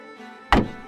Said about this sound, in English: I heard the soldiers' heavy boots above our heads and the trap door being opened.